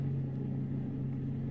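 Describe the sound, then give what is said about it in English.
A car engine hums steadily as the car drives under 25 miles an hour on a road, a continuous low drone with faint road rumble and no voices, holding an even level throughout. “I drove under 25 miles an hour all the way.”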